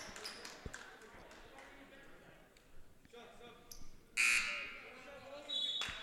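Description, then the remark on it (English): A referee's whistle gives a sharp, shrill blast over the steady murmur of a basketball crowd at a Saints versus Mariners game, and a second, shorter high tone follows moments later amid the rising noise. “and we've got a whistle here.”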